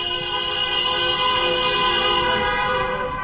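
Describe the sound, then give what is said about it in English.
Horns from taxis and buses passing a protest by Debenhams workers who lost their jobs blare loudly and continuously, several steady tones layered into one sustained chord over a low traffic rumble, with no talking. “I'm actually very overwhelmed with the amount of people that have turned up here today, even the amount of taxi drivers and buses that are beeping as they go by.”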